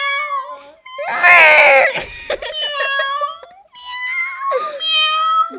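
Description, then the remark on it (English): A voice imitates a cat meowing in a string of drawn-out, wavering mews, with one louder, strained yowl near the start, all fairly loud with no talking. “Gotta do dog and cat. Cat. Okay. No cat. Cat. Meow.”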